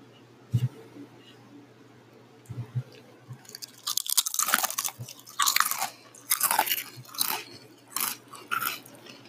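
Potato chips being crunched and chewed: after a few quieter muffled bites, a run of loud, crisp, irregular crunches follows in quick bursts, each sharp and crackly with brief pauses between.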